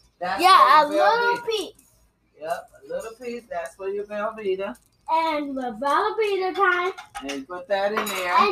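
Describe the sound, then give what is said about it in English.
Metal utensils clink and scrape against a cooking pot in short, irregular taps while butter is put into boiling water, mostly under a child's animated, sing-song talking that runs through nearly the whole stretch. “You put your butter inside the boiling water.”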